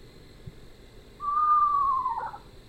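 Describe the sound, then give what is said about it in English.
An eastern screech owl gives one clear, mournful whistled call that slides slightly downward for about a second and fades out at the end, heard alone over faint background hiss. “We have a lot of Eastern Screech Owls around here. So I hear this sound pretty often.”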